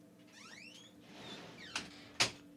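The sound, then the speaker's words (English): A door squeaks open with a few rising, creaky whines, followed by two sharp knocks as it swings shut and latches, with no one talking. “Door opening and closing noise.”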